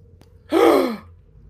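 A single sharp, breathy gasp, fairly loud, lasting about half a second before trailing off into quiet. No talking around it.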